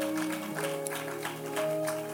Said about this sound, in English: Can you help me clap your hands and celebrate God's servant, the bishop himself?